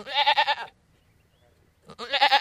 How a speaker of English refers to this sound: I got a name for my goat.